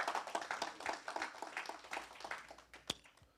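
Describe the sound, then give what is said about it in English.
An audience claps their hands in praise, a dense, steady patter of many overlapping claps that continues throughout, with one sharper, louder clap standing out near the end. “They deserve a hand clap of praise.”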